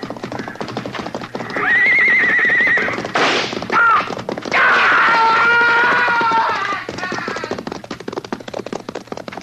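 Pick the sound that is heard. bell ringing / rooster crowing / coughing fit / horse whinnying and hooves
horse whinnying and hooves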